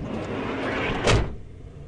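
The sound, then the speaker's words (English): A small camper van's sliding side door rumbles along its track and slams shut with one loud bang, then everything quiets down. No one speaks. “Swish bangs, some people call them, smaller camper vans with sliding side doors that make a swish bang sound as they open and close.”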